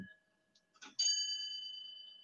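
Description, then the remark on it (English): A clock in Denmark begins to chime six o'clock: after a soft mechanical rustle, one bright, clear bell tone rings out and hangs in the air, slowly fading with a gentle shimmer. “Now my clock will be saying a little sound for a little while.”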